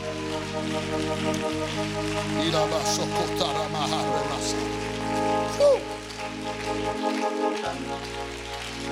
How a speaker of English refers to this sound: Come on, why don't you clap your hands right now? Come on, truly clap your hands and give it to God right now.